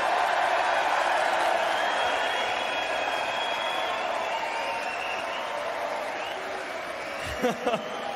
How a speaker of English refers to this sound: So please give a big applause for Johnny Clayton.